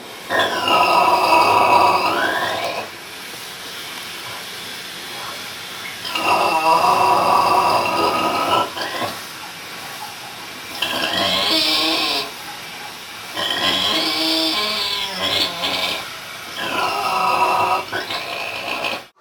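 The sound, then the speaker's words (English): Animal snoring in five long, harsh, rasping snores at a steady rhythm, each a few seconds long, with quieter breathing sounds filling the gaps between them. “Let's learn more about the animal kingdom with snore number three.”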